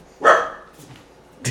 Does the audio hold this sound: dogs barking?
yes